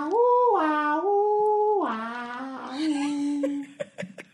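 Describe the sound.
A voice imitates the theme tune of the TV show American Greed without words, holding long, loud, wavering notes that step up and down in pitch before breaking off into a few short clicks and bursts.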